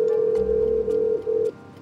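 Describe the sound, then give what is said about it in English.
A door buzzer at the house of Jeffrey Epstein's former chauffeur sounds one long, steady, mid-pitched electronic drone for about a second and a half, with a couple of tiny breaks, then cuts off abruptly. No one speaks. “So, with little hope, we rang the buzzer.”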